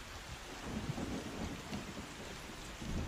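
Heavy rain pours down steadily in a dense, hissing wash, with low rumbling thunder rolling underneath throughout. No voices, just the continuous roar of a storm.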